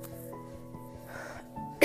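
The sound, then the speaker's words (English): A single sharp cough bursts out at the very end, fairly loud, after a stretch of steady tonal background sound with no talking. “Sorry for coughing”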